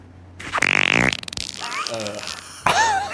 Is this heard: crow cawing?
no